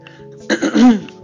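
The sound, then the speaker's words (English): A loud throat clearing that rolls into a short, gravelly cough, lasting under a second, with no talking around it. “Anyways, yeah, I think I've coughed in your ear long enough, cleared my throat in your ear long enough, so I'm just leaving it here.”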